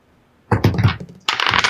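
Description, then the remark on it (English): Two dice clatter and tumble across a hard tabletop in two quick bursts, a rattling roll followed by a denser, brighter skitter, fairly loud with no voices, rolled for initiative in a tabletop game. “And you're rolling 2 dice? Plus your dex?”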